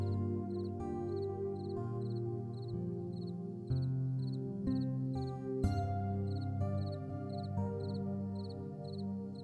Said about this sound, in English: You hear the crickets begin to chirp as the sun is chased away by the night sky.